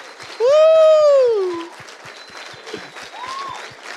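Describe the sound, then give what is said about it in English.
A standing church audience applauds their pastors steadily throughout, joined by the pastors' children cheering, while a loud, sustained high-pitched whoop rings out near the start, followed later by a fainter shorter cheer over the continuing clapping. “It's not just you guys cheering them on, but their kids as well.”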